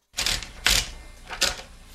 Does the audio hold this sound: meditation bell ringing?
no